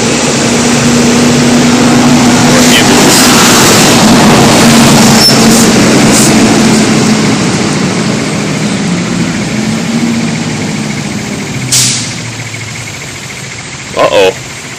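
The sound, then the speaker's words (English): A fire truck's engine rumbles loudly, a steady low roar that gradually eases as it moves off, with a couple of brief sharp noises near the end. “The fire truck's coming.”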